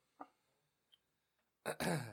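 A loud, raspy throat clearing into the microphone, coming after a mostly quiet stretch with a couple of faint small noises.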